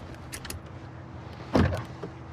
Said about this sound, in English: Power door locks, standard, of course.